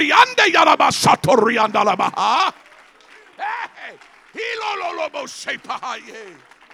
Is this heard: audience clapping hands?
yes